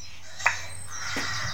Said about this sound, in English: That's not a bird. That is the apple volume up sound. Does sound like a bird though.